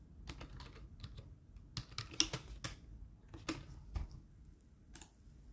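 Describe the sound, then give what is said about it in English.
Quick, irregular clicking of keys on a computer keyboard, a steady patter of short taps with a low background hum and no voices. “Typing was kind of fun, I'm not gonna lie.”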